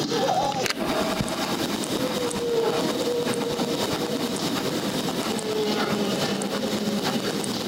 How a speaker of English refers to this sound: These are underwater sounds made by humpback whales as they pass near Bermuda in the spring. They were recorded through a hydrophone, which is a kind of underwater microphone.